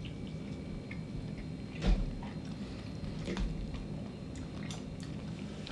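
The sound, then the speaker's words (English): Someone chewing a chicken wing coated in a sparkly, tangy, vinegar-smelling hot sauce, with two sharper wet bites standing out against a low, steady background hiss and soft mouth noises in between. “So what the hell am I about to get myself into? All right, I'm going in. Because my wing is sparkly, so.”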